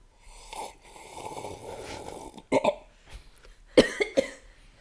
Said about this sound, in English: Okay. Here we go. I'll sip my tea. This will be an ASMR for now.